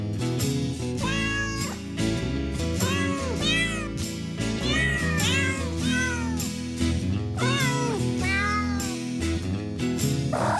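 Cat meows pitched and edited into a bouncy Christmas tune, with repeated rising and falling meows carrying the melody over steady bass and chiming accompaniment, loud and continuous.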